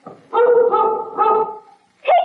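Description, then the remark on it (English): A big, strong dog barks in a few loud, drawn-out, almost howling bursts that run together, then pauses briefly before starting another bark, while carrying a package wrapped in brown paper by its cord. “the dog. He's got the package.”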